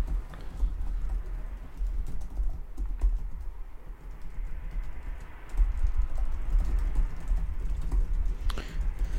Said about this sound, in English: Guys, just vamp while I type. Yeah, a little dead air there. I'm sorry about that. I'm also typing.